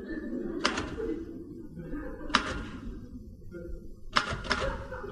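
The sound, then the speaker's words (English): Heavy, thudding typewriter strikes, four or five of them at irregular, widely spaced intervals, with a low rumbling background underneath, as someone wearing gloves types out invitations. “I like typing in gloves.”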